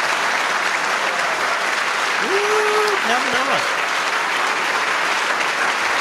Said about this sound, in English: Trump, you know, he has this way of clapping that directs the crowd to continue to clap. He got these guys to clap for like a solid 90 seconds.